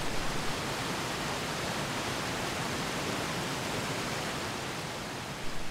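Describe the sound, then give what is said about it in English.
The fast-flowing River Bugða in the Valley of Eternity, southwest Iceland, rushes over a rocky bottom as it enters a narrow, low gorge at the bottom of a canyon, heard from one metre away, in a steady, dense roar of churning water, loud and unbroken throughout, with no voices. “I moved from the top edge of the canyon down to its bottom, microphone positioned a meter away from the fast-flowing river, entering a narrow, low gorge.”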